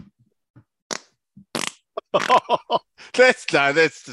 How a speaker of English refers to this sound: Shall I do a fart on air? Wait for it.